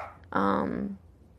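A dog lets out one drawn-out vocal bark, loud and tonal for about half a second before trailing off into quiet background, with no one talking.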